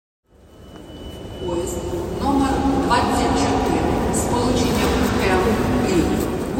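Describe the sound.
A train rolls steadily along the rails of the Ukrainian railway, a continuous rumble that swells after a quiet start, with indistinct voices murmuring beneath the noise.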